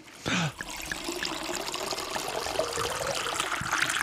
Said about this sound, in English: So if you're at home, pour yourself a little glass.